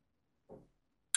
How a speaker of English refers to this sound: That was a bad clink. Are we supposed to clink with beer?